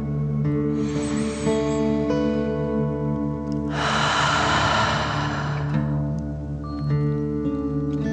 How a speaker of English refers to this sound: Remember to breathe in through your nose, filling up your chest and belly, and then out, pretending you are breathing fire. Deep breath in and out.